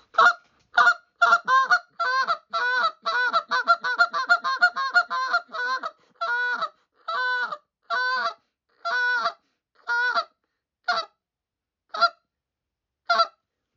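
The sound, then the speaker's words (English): A goose call blown in quick, clipped spit notes to geese coming in: a fast flurry of short honks that slows into evenly spaced single toots with a slight hiccup break, clear with no talking. “If I can start, if they're coming in, then all of a sudden they start getting a little excited, I'll give them a little spit with a little hiccup to it.”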